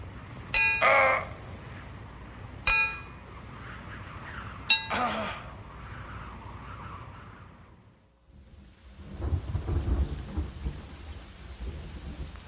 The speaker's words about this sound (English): Hammer, some nails, and a savior.